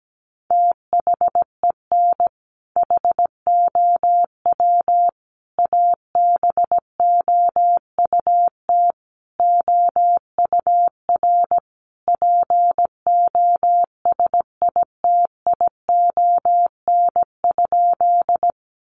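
Morse code sending sentences built from the top 900 words at a moderate pace of about 17 words per minute: one steady mid-pitched beep keyed into short and long pulses, with brief pauses between words and no voices.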